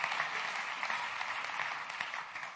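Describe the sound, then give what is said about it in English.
An audience claps their hands to the Lord in praise, steady, dense applause, many hands blending into a continuous crackling wash that holds at an even level throughout, with no voices standing out. “Somebody clap your hands to the Lord and give him praise right now.”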